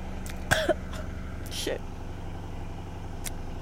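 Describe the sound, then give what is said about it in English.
Two short, raspy coughs from a thirsty person, about a second apart, over a steady low hum like an idling car engine. A faint click follows later. “It's making me cough at how thirsty I am.”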